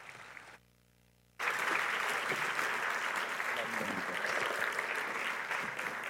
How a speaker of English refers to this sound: So would you just do me the honor of giving him a warm round of applause